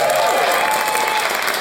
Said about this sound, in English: I'm Ray Johnston, and please, some pity applause for my co-host, Benjamin Law.